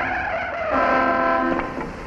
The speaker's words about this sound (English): In keeping with the sexist attitude of the times, at this point the two women are shown almost causing a car crash.